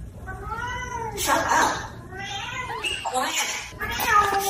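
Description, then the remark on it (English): A talking parrot squawks in rasping, voice-like bursts, saying "shut up" and "quiet". It trades back and forth with a cat's drawn-out meows and yowls, both fairly loud in quick alternation, as the parrot argues with the cat. “That is a parrot arguing with a cat.”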